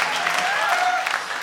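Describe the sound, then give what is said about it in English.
A live audience gives a standing ovation, applauding to vote in a debate: a dense wash of many hands clapping at even loudness throughout with faint cheering tones mixed in. “I'd like you to applaud now. It's a strong and long there. A standing ovation.”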